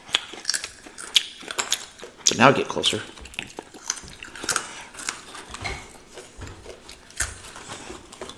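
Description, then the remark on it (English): Crunchy chewing of Wheat Thins crackers into the microphone, a rapid series of dry, crackling bites and crunches right against the microphone, with a brief spoken voice in between. “Crackers. Wheat thins. You're doing wheat thins.”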